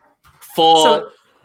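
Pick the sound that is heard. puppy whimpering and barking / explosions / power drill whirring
puppy whimpering and barking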